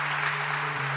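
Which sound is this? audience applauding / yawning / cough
audience applauding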